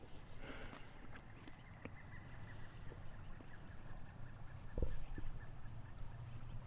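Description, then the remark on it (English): A pileated woodpecker calls faintly, a brief burst of loud, wild notes near the start, over a quiet outdoor background with a low steady rumble. “Pileated followed us down here.”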